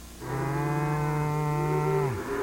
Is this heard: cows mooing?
yes